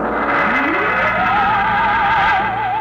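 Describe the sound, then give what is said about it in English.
Trucks and jeeps scuttle around a vast concrete strip at Dry Wells, Texas, among cranes and loading machinery beneath a rocket, amid a dense, continuous roar, one engine whine climbing in pitch and then wavering steadily up and down. Loud and busy throughout, with no talking. “On the vast concrete strip at Dry Wells, Texas, the form of the rocket towers above the cranes, the loading machinery, and the scuttling trucks and jeeps.”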